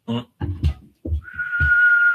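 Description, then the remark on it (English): A person whistles the name of a language, a single sustained note that drifts slightly downward in pitch, coming in after a few short low vocal sounds that keep murmuring underneath. “The name of the language is a monotonic decrease in frequency, which along the way passes through all of the available phonemic consonant articulations.”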